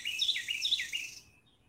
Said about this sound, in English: Whoa. So a really loud bird right above me there.